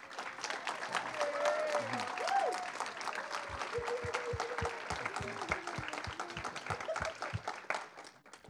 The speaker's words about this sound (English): And just a big round of applause and a big thank you to all the seniors.